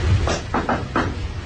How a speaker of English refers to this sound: I just whacked my toe on the banister. Oh, my gosh. I just whacked the crap out of myself.